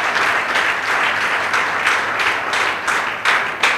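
A church audience claps their hands for Jesus in loud, sustained applause, a dense wash of many overlapping claps with occasional sharper surges, continuing steadily without any talking.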